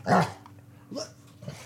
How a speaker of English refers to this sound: Growling dogs.